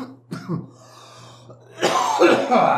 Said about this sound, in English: Stop with the coughs. Sorry. Going on so we can edit the coughs.